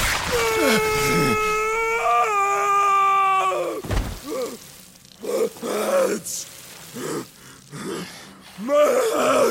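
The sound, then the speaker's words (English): A man lets out a long, strained scream of pain, then breaks into a series of shorter anguished groans and cries, loud with a faint hiss underneath; voice acting for a character. “One of the things that, like, you don't really think about too much with voice acting, but you just the screams of pain.”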